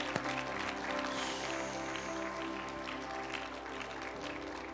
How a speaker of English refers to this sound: If you believe it, clap your hands and give.